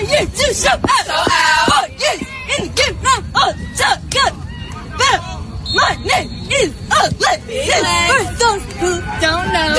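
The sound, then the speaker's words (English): A crowd chants a team cheer in loud, overlapping voices, a woman spelling something out with the crowd behind her, the shouted syllables rising and falling in a steady rhythmic pattern without a break. “Quizzing … w/Chanting Audio To See If He Can Identify It”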